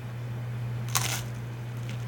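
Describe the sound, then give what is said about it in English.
A crisp bite of toast crunches once, a short brittle burst, followed by a fainter crackle moments later, all over a steady low electrical hum with no talking. “Apologies for the toast crunching sound effects.”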